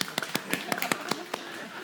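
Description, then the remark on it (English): A short run of soft, light hand claps, about eight or nine crisp pats in a quick, slightly uneven rhythm, fairly quiet, like a polite golf clap. “Golf clap, golf clap.”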